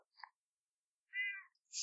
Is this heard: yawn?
no